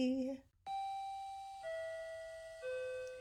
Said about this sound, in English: The closing chime had already started. It is that distinct three-note Toronto anthem that keeps everyone on schedule. G-C-E.